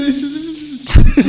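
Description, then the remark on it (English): A voice makes a drawn-out, breathy hiss like a snake for most of a second, then breaks into a couple of short vocal bursts or laughs. “I'm a snake.”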